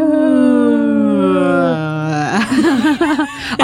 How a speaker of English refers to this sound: Sad wolf howl if I was able to find it.